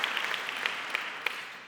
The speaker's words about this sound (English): I believe it is your 80th birthday today, and you have family with you this morning. Can we give you a round of applause? Happy birthday. Happy birthday.